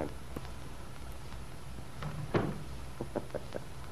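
A door swings shut with a single soft thump, followed by a few light latch-like clicks, over a steady low hum.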